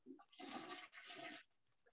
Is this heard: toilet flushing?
yes